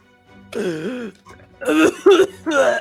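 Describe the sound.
A voice makes a strained, gurgling throat-clearing sound, then three quick harsh coughing bursts, fairly loud, imitating someone coughing up brown water.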